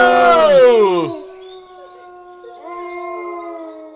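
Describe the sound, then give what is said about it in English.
A pack of wolves howls: one long voice slides downward, then several sustained, overlapping howls swell in, moderately loud and clear with no talking. “Mike, watch out for that pack of wolves!”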